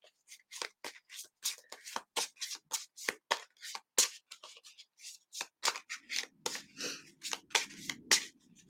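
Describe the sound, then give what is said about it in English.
A deck of cards being shuffled until a card pulls out, a rapid run of crisp papery riffles and slaps in an uneven rhythm, with a soft rustling bed creeping in toward the end. No one speaks. “And I'll shuffle the deck and a card will pull out.”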